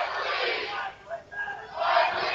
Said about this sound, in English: Got some soccer cheers going on. We sure do. This has been a good atmosphere here, a good crowd.